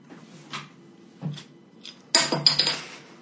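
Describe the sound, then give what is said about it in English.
A bottle cap clinks: a few scattered light taps, then a bright, rattling clatter of several quick metallic clinks that settles after about a second. No voices are heard. “It was a bottle cap, everybody.”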